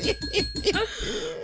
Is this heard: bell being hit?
yes